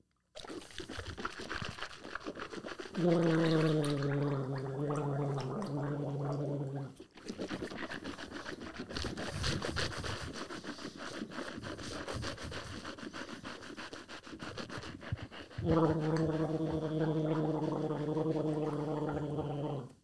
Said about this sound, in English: we're going to gargle for 30 seconds.